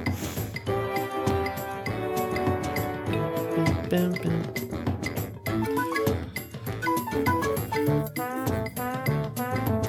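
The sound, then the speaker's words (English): The overworld theme from the video game Donkey Kong Country Returns plays as bright instrumental music, with a bouncy, tuneful melody over steady percussive beats. It stays full and continuous throughout, with no one talking. “All right, so this one is the overworld theme for Donkey Kong Country Returns.”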